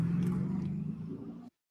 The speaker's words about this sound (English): Police say eventually robbing the 55-year-old driver, stealing a big bag of cash before darting back into the Benz as the car speeds away.